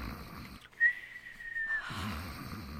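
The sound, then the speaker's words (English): A man snoring in his sleep: a rough, rumbling snore, then a long thin whistle on the breath out, and the rumbling starts again. Fairly loud, with no talking. “you promised you wouldn't snore.”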